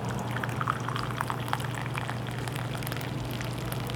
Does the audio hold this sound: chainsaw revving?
no